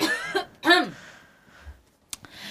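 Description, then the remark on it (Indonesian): A couple of throaty coughs in quick succession, followed by quiet and then a sharp click or two near the end. No one speaks. “Aku mau batuk.”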